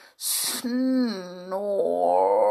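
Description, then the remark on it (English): A voice imitates the snoring of the sleeping Snoogle: a breathy hiss, then a long, drawn-out, wavering voiced rumble that rises at the end, fairly loud, with no other sounds. “Snore, went the sleeping Snoogle.”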